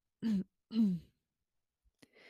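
Two soft, muffled coughs, one right after the other, then a short pause, a faint click and a brief hiss.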